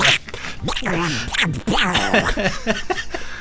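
A Donald Duck cartoon voice quacks and squawks in a fast, nasal, garbled stream for a few seconds, fairly loud, with no pauses between the sputtering bursts.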